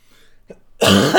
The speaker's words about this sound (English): that wasn't a sneeze. That was Cough.